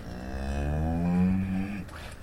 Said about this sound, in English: A herd of cattle at Appleton Farms in Ipswich, Massachusetts, on a gray, drizzly day. Amid rolling grasslands, it's one of the oldest continuously operating farms in the United States.